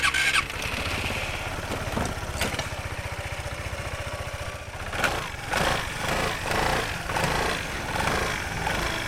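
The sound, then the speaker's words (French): A small scooter engine starts up and runs, its buzzing idle pulsing steadily, then revving in uneven bursts through the second half, as the rider sets off to visit places in Forest. No one speaks. “On va peut-être prendre, comme on va faire différents endroits à Foret, peut-être qu'on pourrait prendre mon scooter pour, même si le premier endroit n'est pas très loin.”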